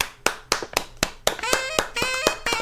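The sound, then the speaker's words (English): Light, polite tennis-style clapping: a dozen or so crisp hand claps at a steady, unhurried pace, with a sustained tonal sound joining in beneath the second half of the claps. “Tennis claps. Those should be light, delicate.”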